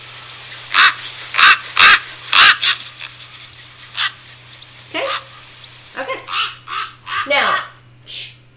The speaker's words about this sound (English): So that looks like it's an Australian raven